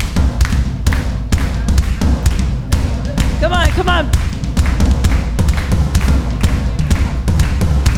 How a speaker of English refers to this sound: All right, you ready? Give us a beat